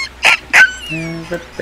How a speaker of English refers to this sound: Oh, what's the matter, puppy?